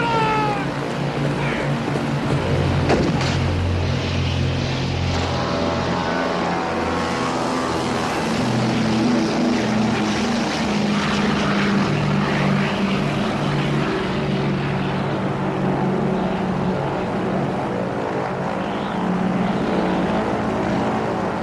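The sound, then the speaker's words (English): A propeller airplane engine in a film's stunt action sequence set in India, where someone hangs off the plane, drones loudly and steadily for the whole stretch, a thick low rumble with whining harmonic tones layered over it and a brief sharp burst early on. “and then we have the big, you know, action set piece at the end back in India, and you've got someone riding a horse onto a plane and then hanging off a plane.”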